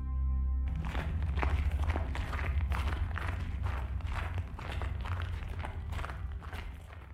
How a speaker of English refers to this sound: His footfalls crunched the snow beneath them. The frozen ground, swaddled in its diamond-dusted blanket, cracked, scattering small echoes into the fresh-born sky.